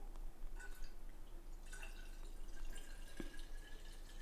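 Liquid, an energy drink mixed with alcohol, trickles steadily into a cup, a soft continuous pour broken by small drips and splashes, fairly quiet, with no voices.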